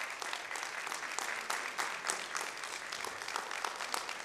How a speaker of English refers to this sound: Stand up. You can clap for them as I come.